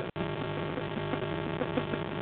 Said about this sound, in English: I can hear you, but I can't. I can also hear like really loud static.